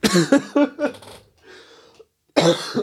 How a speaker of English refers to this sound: I'm going to cough again, aren't I?